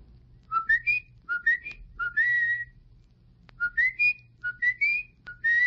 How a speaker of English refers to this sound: Sometimes, instead of calling, people whistle. When it's difficult to find each other, we start to whistle.